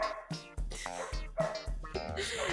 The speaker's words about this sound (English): Oh my god, is my can you hear my dog like loud? Yes.